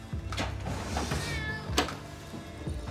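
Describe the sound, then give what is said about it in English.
A cat in a coma patient's room lets out a drawn-out, wavering meow, with a couple of shorter cries around it over a steady low background hum; no one speaks. “You actually think the cat is going to predict someone's death?”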